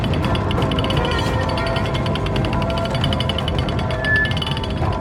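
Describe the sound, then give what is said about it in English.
A castle drawbridge being raised, heard as a steady, loud mechanical grinding with a fast, rapid clatter of ratcheting chains and gears running continuously throughout, with no voices. “I turned my head to look back at the castle and could see the drawbridge pulling up.”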